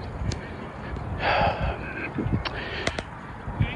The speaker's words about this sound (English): if you're listening and you hear me breathing a little hard, I am currently, if you're not on YouTube watching, I'm currently on a ruck